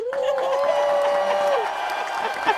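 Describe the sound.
An audience claps in a steady, dense patter for a couple of seconds, with a long sustained cheering voice riding over the first half before fading out.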